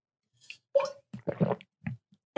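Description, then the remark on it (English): Wet, bubbling gurgles rise from a person's throat in a handful of irregular bursts, fairly quiet, with short gaps between the plops and no talking. “Of course, my throat is bubbling yet again.”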